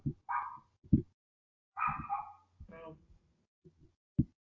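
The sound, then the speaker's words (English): A dog barks and yelps in a handful of short, sharp bursts at irregular intervals, moderately loud, with brief pauses between calls. “That dog gets it real good.”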